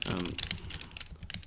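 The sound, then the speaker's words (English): Quick, irregular clicks of typing on a computer keyboard, moderately loud, with a brief murmur of voice at the very start. “You typing away at your little computer here?”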